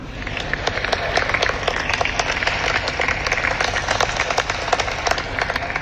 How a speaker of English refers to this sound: So Bill Cosby is home. We want to give him a round of applause.